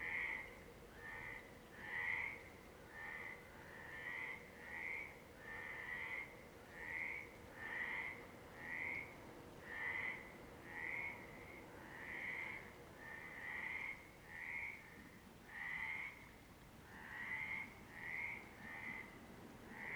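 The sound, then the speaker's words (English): Frogs croak steadily at night in a loud chorus, their bright calls pulsing in a regular rhythm over a low, constant background rumble, with no voices. “I know this, and the frogs know it.”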